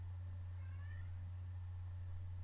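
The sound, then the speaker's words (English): A single short, faint meow from a cat named Phoebe, sounding thin over a steady low electrical hum, with no talking. “Listen to Phoebe. If any cat can do it, it's him.”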